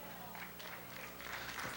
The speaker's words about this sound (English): That clap was weak.